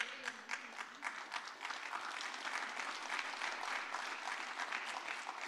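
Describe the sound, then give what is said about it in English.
A church audience bursts into steady applause during a sermon, many hands clapping in a dense, sustained wash of bright slaps that holds at a fairly even level for several seconds, with no talking. “I'm getting passionate, not for your applause.”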